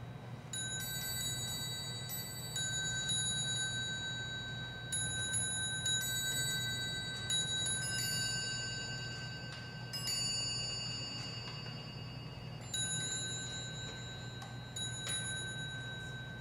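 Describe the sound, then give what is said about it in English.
A clock's bells chime in a fast, hurried sequence, bright metallic strikes ringing out and overlapping as their tones linger, over a steady low hum, with no one speaking. The clock's original springs were replaced with much larger springs, making it run much faster. “So what he had his clockmakers do was to actually remove the original springs and put much larger springs in. This made it run much faster.”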